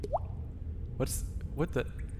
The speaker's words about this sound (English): Are we under a water? Are we under a water? We might be under a water because look at the ceiling is dripping. It's dripping.